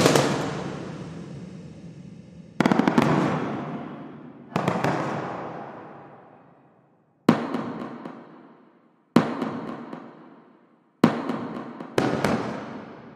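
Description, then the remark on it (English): Six loud, sharp explosion hits at uneven intervals, each followed by a long, blunt, harsh reverb tail from a true stereo recording of a parking garage in West LA, decaying over a second or two. No voices are present. “And you can hear that kind of fantastic, kind of blunt, sort of atonal, kind of nasty kind of reverberation that's happening.”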